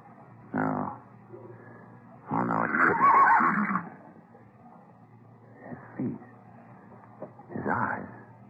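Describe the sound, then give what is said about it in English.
A horse with a star on its forehead neighs and snorts in several loud, rough bursts, one long drawn-out whinny in the middle and shorter calls before and after, with quiet gaps between. “That's him, mister. That's the horse.”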